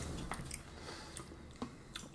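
Someone chews crunchy oat cereal, a few irregular crisp crunches over soft mouth noise, fairly quiet, with no talking.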